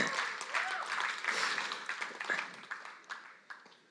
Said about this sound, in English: Why don't we give them a quick round of applause?